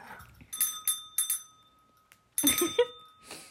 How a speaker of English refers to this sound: ringing this bell that says ring for beer.